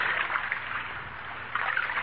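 A canoe paddle swishing through water, a soft steady wash of splashing that swells at the start and again near the end, like strokes. No one speaks.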